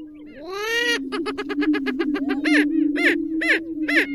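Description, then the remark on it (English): A greater prairie chicken calls: a steady low hooting drone runs beneath a rapid burst of cackling notes, followed by several louder, rising whoops at an even pace. “I'm going to start with the greater prairie chicken. This is a wild chicken that lives in the middle of the country from top to bottom and up into Canada.”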